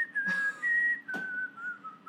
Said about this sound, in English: What are you doing? What are you whistling? What are you doing? What song is this? I was trying to do VPR.